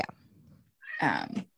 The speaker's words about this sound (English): My cat agrees. He just yowled in the background. I heard him.